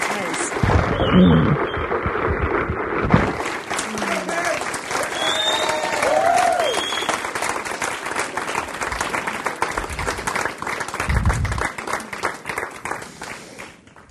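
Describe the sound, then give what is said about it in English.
A large crowd stands, claps and cheers steadily, dense applause with scattered whoops and shouts on top, sustained for the whole stretch before slowly thinning at the end. “Let's stand up and cheer.”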